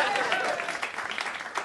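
A crowd applauds steadily at a comedy venue at the Chippo Hotel, dense overlapping claps forming a bright, sustained wash of noise at an even loudness throughout.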